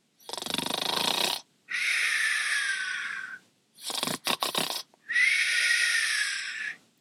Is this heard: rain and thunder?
no